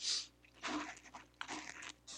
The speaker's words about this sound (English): Sorry, I'm just taking a sip here of my tea.